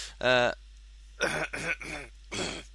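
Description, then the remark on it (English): Four loud, close-up coughs right against the microphone, the first a harsh hacking burst followed after a pause by three more in quick succession, with brief silence between them and no talking. “sorry, I didn't want to cough so much into the mic.”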